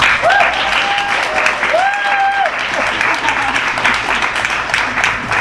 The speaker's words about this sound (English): So I want to introduce you to their executive director. We're going to clap really loud